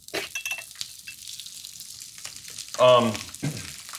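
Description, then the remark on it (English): Food sizzles in hot oil with a steady crackling hiss and scattered pops, and a short, louder tonal burst cuts in briefly near the end. “And then a little bit of this action. Put some oil.”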